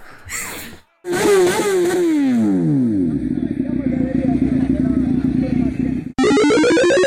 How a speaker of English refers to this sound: Let me get on my motorcycle that I brought into the foyer.